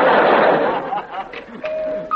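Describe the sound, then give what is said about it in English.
A front doorbell chimes two notes, a lower steady tone followed by a higher one, after a burst of loud, noisy crowd sound and murmuring voices fades down. “I better go and see who's coming in the front door”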